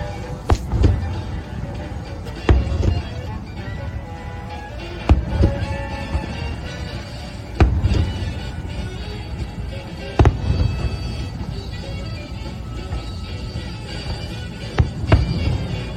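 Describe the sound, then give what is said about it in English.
A fireworks display at the Grand Floridian, heard from its dock in the evening, booms out in sharp, spaced bursts every few seconds, each one crackling and echoing over a steady, dense wash of background sound, with no one talking. “I think there's only one way to finish the evening, and that's for some fireworks.”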